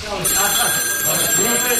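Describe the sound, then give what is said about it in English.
A telephone rings steadily throughout, its bright tones fairly loud over a busy background with some indistinct voice-like sound underneath. “We got to go to the phone line here.”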